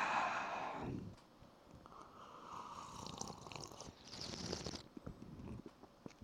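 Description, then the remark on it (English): Wet slurping and sipping of a barrel-aged beer, followed by soft mouth sounds, lip smacks and a breathy exhale as it is tasted, with no talking. “Let's taste it. Some ASMR for you.”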